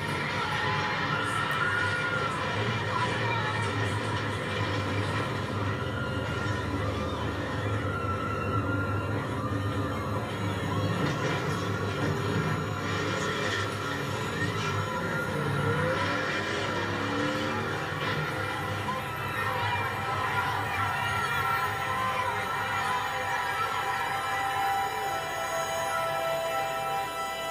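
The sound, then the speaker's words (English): A large crowd shouts and screams in a dense, chaotic wash of voices that never lets up, with a low vehicle-like rumble running underneath throughout, as a car is driven directly into a crowd of protesters in Charlottesville, Virginia, in 2017. “In 2017, in Charlottesville, Virginia, a confrontation broke out between anti-racist activists and white power supporters. A white supremacist took his car and drove it directly into the crowd.”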